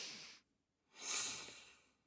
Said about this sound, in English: And we give you air from our lungs. And a big sniff as well.